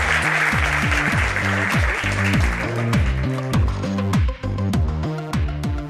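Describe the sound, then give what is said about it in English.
An audience gives a warm round of applause at the close of a question session, rising over a steady, rhythmic music track with a pulsing bassline. The clapping is strongest at first and thins out as the music carries on. “We can jump into the next one, but let's give another warm round of applause.”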